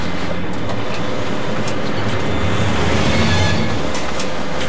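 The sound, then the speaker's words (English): A printer churns out a steady, rhythmic pulsing noise, a loud mechanical rumble with a repeating chug that runs continuously for the whole stretch, with no voices over it. The printer has been going like that for 10 years and cannot be shut off. “It's like a pulsing... Right. Rhythmic.”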